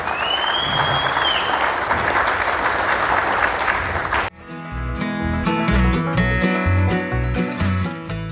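A sustained round of applause, dense and fairly loud, fills the first half before cutting off abruptly as upbeat music with a strong bass line takes over.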